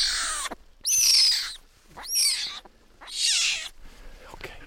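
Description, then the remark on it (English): A male cougar kitten, small enough to fit in two hands and with oversized paws, growls in four loud, raspy bursts separated by brief pauses, each one harsh, hissing and high-pitched, with no voices over it. “You can hear him growling, and his paws are oversized.”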